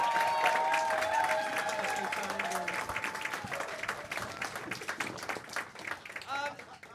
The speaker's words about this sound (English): Applaud!